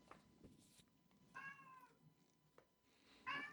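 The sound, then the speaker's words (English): A cat lets out two loud, drawn-out meows with a pause between them, sounding somewhat distant across a room, over a faint background hum and a few small clicks. “She's yelling. I didn't realize it picked up that she's like halfway across the room.”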